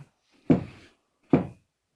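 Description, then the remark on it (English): Two solid, hollow knocks on a hard surface, fairly loud, spaced just under a second apart with silence around them and no voices, imitating knocking heard in a bathroom. “Like, yeah, like that. 1, 2, 3. Bam, bam, bam.”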